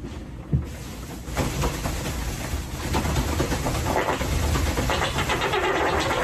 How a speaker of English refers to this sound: I mean, you can kind of hear what he's doing. He's standing on one leg, shaking his other leg really quickly as he farts. That's what's producing that fart sound.